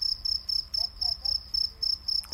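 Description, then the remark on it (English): Crickets chirp steadily in southern Egypt at about 8 p.m., after sunset, in a rapid, regular rhythm of high, thin trills, about three bursts per second, fairly quiet over a low background hum with no one talking. “I hope you can hear in the background the crickets.”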